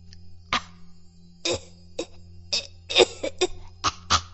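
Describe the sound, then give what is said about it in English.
A fit of coughing: around nine harsh, separate coughs that come faster and closer together toward the end, with a low steady hum underneath and no talking. “Apologies for the cough.”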